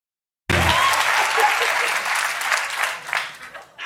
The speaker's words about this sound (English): That is the applause of recognition, I see.